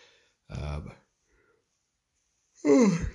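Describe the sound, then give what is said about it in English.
A breathy yawn in two parts: a short voiced exhale, a pause of about a second and a half, then a louder, drawn-out groaning breath. No words are spoken. “Wouldn't be a podcast without me yawning, sorry.”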